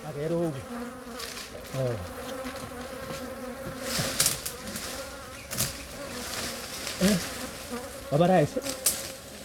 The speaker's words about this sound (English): Here are bees.